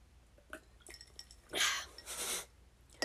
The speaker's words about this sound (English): Great podcast material. Me slurping my coffee.